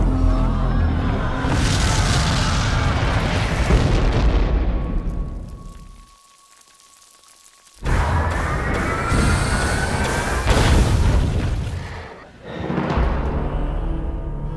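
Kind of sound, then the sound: nature, thunder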